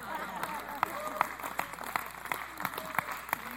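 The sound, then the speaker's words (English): A church audience breaks into scattered applause, giving the Lord a hand clap, many hands clapping in a steady patter with sharper individual claps standing out, over a murmur of voices and calls from the crowd. “Y'all ought to give the Lord a hand clap.”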